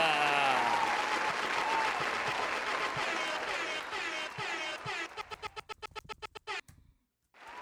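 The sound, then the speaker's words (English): A burst of dense crowd applause sound effect, triggered again by a button, with some whooping, which thins out into a string of separate, evenly spaced claps before cutting abruptly to silence. “Wait, I hit the fucking applause again.”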